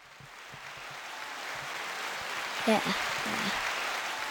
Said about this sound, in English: In this segment, we'll be having a special guest, my mom. Can we get a clap, please?